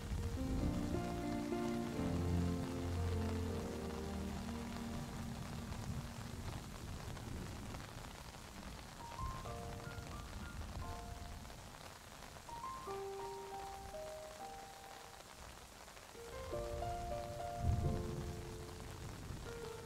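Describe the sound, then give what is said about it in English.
Steady rain patters on hard surfaces in a continuous, even wash, with soft sustained musical tones drifting above it and no voices. “you take a deep breath in, smelling the rain, smelling the greenery around.”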